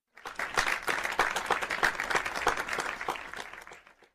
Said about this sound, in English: you deserve a round of the applause. Or don't fucking applause, I'll do it.